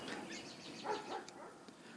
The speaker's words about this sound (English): Well, we got dog joining in now, too.